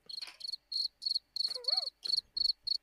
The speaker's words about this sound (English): I was waiting for you to say something. And I played the cricket sound effect instead.